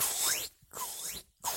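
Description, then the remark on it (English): A voice imitates a penis pump with two loud, breathy hissing strokes, each with a rising whistle-like sweep, separated by short silences in a steady pumping rhythm. “That's actually a really good penis pump noise too.”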